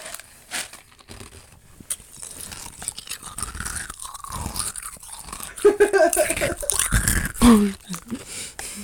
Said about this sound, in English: Wait, I need to chomp on some ice. Wait, ASMR.